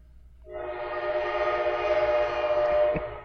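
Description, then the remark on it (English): A passing train's horn blares in one long, steady blast, rich and harmonic, starting after a brief pause and holding loud for nearly three seconds, with a couple of sharp clanks near the end. “It's a loud choo-choo.”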